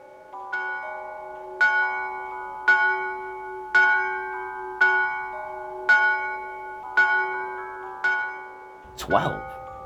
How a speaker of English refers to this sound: He was endeavouring to pierce the darkness when the chimes of a neighbouring church struck. He listened for the hour.